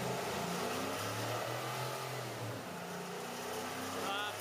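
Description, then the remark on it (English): An idling engine with a harsh, metallic ignition rattle running steadily through it, a gritty scraping clatter like a chain dragged over a metal railing, loud and continuous across the whole stretch. “would be more akin to like a metallic rattle, or it sounds like someone dragging a chain over like a metal railing.”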